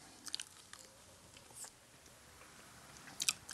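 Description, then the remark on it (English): Quiet chewing of communion bread during a Christian communion service: soft, scattered crunchy bites with brief pauses between them, ending in a slightly louder cluster of crunches. No one speaks. “Thank you for this bread. We remember, Lord, what you did for us as we partake. Amen. Take and eat.”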